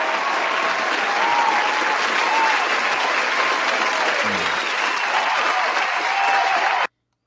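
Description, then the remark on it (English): A dense round of applause from a large crowd, steady and loud for about seven seconds with faint cheering mixed in, then cutting off abruptly. “With a round of applause. I got it right here, man.”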